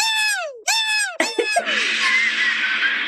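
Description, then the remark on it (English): A shrill, squealing 'woo power' sound effect played to welcome a guest: three quick calls that slide downward in pitch, followed by a loud, steady wash of noisy roaring that runs to the end. “Oh my God, what is that noise? It sounds like someone's hamster is dying. Oh my God. It's a woo power.”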